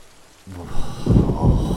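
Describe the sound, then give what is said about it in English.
A sudden, loud crack of thunder on a wet night breaks a brief quiet, then rolls into deep rumbling over a steady wash of rain. No one speaks. “There is a sudden crack of thunder, and out of the darkness of the wet night, you see a strange shape approaching the pub at some speed.”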